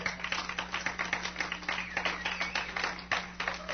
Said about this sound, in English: Yeah, you can clap. Clap!